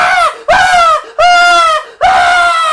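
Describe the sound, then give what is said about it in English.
A voice imitates a frightened teenage girl in a movie theater screaming whenever something scary happens: four loud, high-pitched shrieks in quick succession, each held briefly and separated by short gaps, with no talking. “There was this one girl, every time something scary would happen, she'd scream.”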